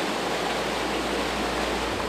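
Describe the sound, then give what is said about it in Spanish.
The Magdalena River at Los Dinamos in Magdalena Contreras rushes steadily in a continuous, full hiss of flowing water, fairly loud, with no voices or other sounds breaking through. “El sonido del río Magdalena acompañó su experiencia.”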